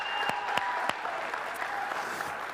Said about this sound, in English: Yeah, that was not a good hand clap. Come on, y'all.